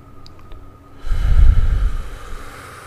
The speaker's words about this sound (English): Don't breathe on the microphone.